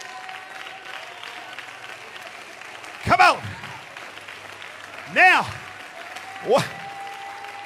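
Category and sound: crowd, audience clapping hands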